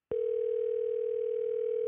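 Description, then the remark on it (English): A steady, unbroken telephone ringing tone sounds clearly for nearly two seconds on an outgoing call placed by Alec Baldwin, with no voices or other sounds around it. “Thank you so much for taking this phone call.”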